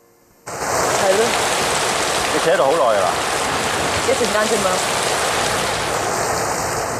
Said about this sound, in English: In one very moody scene in the rain, Mr. Zhou offers to bring Ms. Chen home.